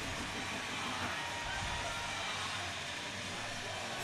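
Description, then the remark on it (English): A hockey crowd at McMoran Arena roars and cheers after the Northern Huskies score to take the lead, a loud, dense wash of noise that holds steady for about four seconds without any single voice standing out. “Listen to McMoran Arena.”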